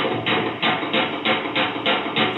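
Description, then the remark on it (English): A rapid series of about seven sharp gunshots in a played police video, a suspect who got out of his car at a DUI traffic stop shooting at officers, fires at a steady, quick rhythm, each crack loud and muffled with a slightly tinny, recorded quality, over a constant background hiss with no voices. “That's him shooting at the guys.”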